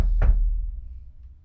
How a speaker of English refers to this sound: Did you have to knock on the table? I just figured it would go through into the podcast that I was knocking on.